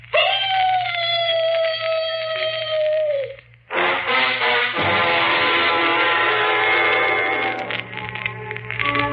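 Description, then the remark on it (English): A voice imitates a mournful dog howl: one long, steady, drawn-out wail that sags at the end, followed by a louder, rougher stretch of overlapping howling over a low steady hum. “First, the mournful dog howl.”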